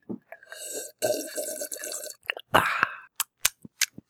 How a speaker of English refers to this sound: Take a drink first. Make it all the noise. Yeah. Make it. No, you're not being loud enough. Make it louder. Louder drink. Louder.